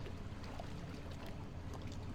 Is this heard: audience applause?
no